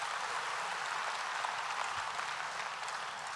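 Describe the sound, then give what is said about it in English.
A crowd claps steadily, the many hand claps blending into a dense, loud, even wash of applause with no voices standing out. “You're able to be, come on, you can clap there.”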